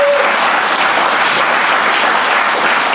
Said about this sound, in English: There must be 40,000 people in this room. Oh my God. It's is a full room. It's great. Yeah. What a great turnout. How many of you, by applause, listen to the show? Applaud if you can.